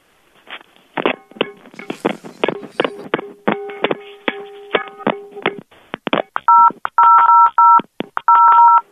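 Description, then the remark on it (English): A rapid series of sharp, loud clanks and knocks with a lingering metallic ring as a pan and a phone are banged together like cymbals, then a burst of phone keypad beeps as the banging continues. No one speaks. “Yeah, but instead of two pans together, use one pan and the phone and bang those together.”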